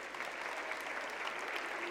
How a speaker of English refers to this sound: Now, thank you, boys and girls. Give them a round of applause.